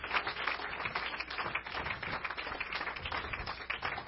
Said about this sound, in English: So can we give him and his wife a big hand clap of appreciation?